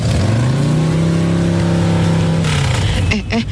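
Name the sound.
motorcycle engine revving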